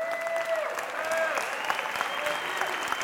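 An audience claps steadily for a few seconds for an audience member asked to stand up, a dense, even patter of many hands at moderate loudness, with a faint whistle-like tone and a few voices mixed into the applause.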